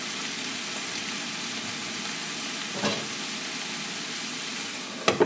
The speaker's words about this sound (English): Okay, tomatoes are in. Cover your skillet now and let those tomatoes cook down on the low heat for about 5 minutes.